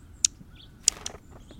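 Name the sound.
dark-eyed junco calls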